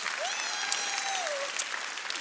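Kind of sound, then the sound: crowd, audience clapping hands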